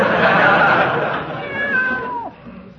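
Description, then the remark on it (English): A cat, Aesop, lets out a long, drawn-out meow that rises and then bends downward before trailing off, sounding fairly loud over a dense, noisy background. “Give the cat a boot if he bothers you, Peavy.”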